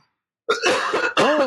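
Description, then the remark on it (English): A person coughs and clears their throat, a harsh rasping burst followed by a brief pause and a second strained, gravelly throat-clearing, loud and without speech. “Oh, I'm telling you, I'm going to be coughing the whole show.”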